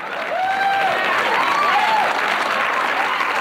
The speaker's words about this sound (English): So when the lights come up and the Newhart audience is sitting in those seats and they see the Bob Newhart Show set, you get a little bit of laughter. Honey. And then you get applause.